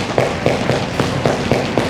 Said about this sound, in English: So what we're going to do is we're just going to stomp on the floor for about 5 seconds. Ready? Do it.